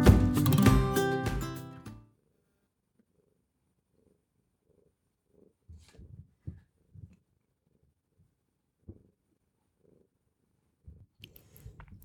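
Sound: cat purring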